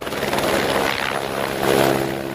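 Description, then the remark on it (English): A helicopter takes off in Norway to rescue three sheep, a ewe and two lambs, stranded on the side of a mountain; its rotor chops in a steady, rapid pulse over a loud engine whine that swells briefly near the end, with no voices. “A helicopter takes off to rescue three sheep stuck on the side of a mountain.”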